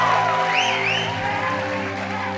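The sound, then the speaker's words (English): An audience shouts and cheers in praise of God in a steady, loud roar, with a couple of high rising whoops standing out early on and sustained musical tones humming underneath. “And so since our God is good, can we lift up a shout of praise for him right now?”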